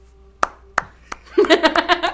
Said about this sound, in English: Sarcastic clap.